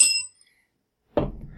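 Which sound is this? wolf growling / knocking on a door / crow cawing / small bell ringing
small bell ringing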